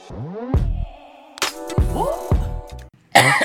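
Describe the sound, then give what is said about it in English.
A series of four or five harsh coughs, fairly loud, coming in uneven bursts with short voiced tails, ending on a sharper, breathier hack. “Your coughs should just be our transition sounds.”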